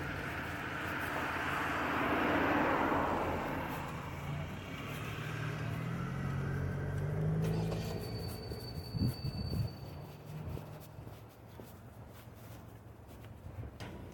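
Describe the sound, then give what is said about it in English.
A Salem city bus, route 455 heading to Salem Depot, passes by with a swelling roar and low engine rumble, then fades into steady street noise. No one speaks. “The Salem bus, the 455, just passed, heading to Salem Depot.”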